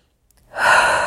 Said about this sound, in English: Strong exhalation through the mouth as we go.